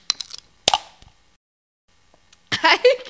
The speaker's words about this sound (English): This is absolutely terrible. It's going to be us just like gulping on this. This is fucking disgusting.